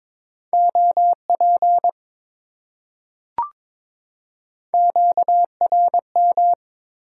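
Steady keyed Morse code tone sending amateur radio contact (QSO) elements at 22 words per minute, beeping in quick dot-and-dash bursts, clear, with a short click in a pause midway before the rapid beeping resumes. No voices.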